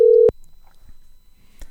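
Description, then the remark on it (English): A loud, steady telephone ringback tone sounds briefly as a call is placed to someone in Indiana, then cuts off abruptly with a click, leaving only faint, quiet line noise and a soft rustle. “You're going to get the ringing noise and everything.”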